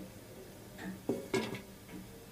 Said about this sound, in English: lay the tea set out.